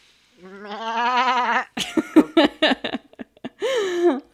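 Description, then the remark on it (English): A goat bleats in a long, quavering cry, followed by a burst of choppy, sputtering bleats and then one more wavering call, all clear with no talking. “Okay, so the inclusion of sculptures as a separate category implies that these goats are live goats?”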